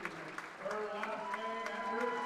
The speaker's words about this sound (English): And as you hear, a lot of applause in the background as we have a pretty full house for a volleyball game. I mean, yeah, it's a good crowd to see.